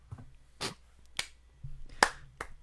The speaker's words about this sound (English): It's a good show this week, guys. Good show, everybody. He gets the 80s slow clap.